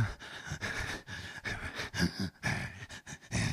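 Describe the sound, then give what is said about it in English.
A voice imitates the heavy, angry breathing of a wife sweeping aggressively: a rapid series of harsh, forceful huffs and pants in an uneven rhythm, fairly loud, with no words spoken. “She's breathing all intense.”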